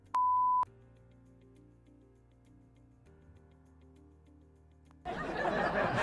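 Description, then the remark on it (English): A single loud censor bleep, a steady pure tone lasting about half a second, cuts in sharply and stops, followed by a low murmur and then a burst of noisy commotion. “Your bleeping was off slightly there”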